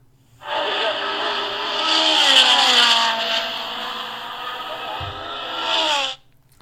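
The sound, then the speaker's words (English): A loud, continuous engine roar from cars racing by, the revving pitch climbing and then sliding lower over several seconds before cutting off abruptly. No one speaks over it. “Oh, man, those guys, they always fly by here at that same exact time, It's like they know what I'm going to do”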